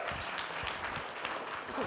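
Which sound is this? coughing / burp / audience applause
audience applause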